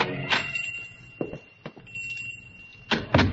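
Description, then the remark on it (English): A man pushes open the door of a pawn shop in the oldest part of a city and goes in, with a few thumps and clicks, while a steady high-pitched ringing tone sounds throughout. No one speaks. “On a sudden impulse, he pushes open the door and goes in.”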